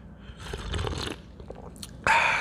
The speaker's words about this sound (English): I put me some tea on, so I got some black cherry tea right here. Let me take a quick sip of that.